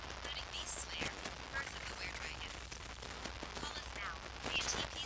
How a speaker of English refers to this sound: What the fuck is this? Interference or some shit.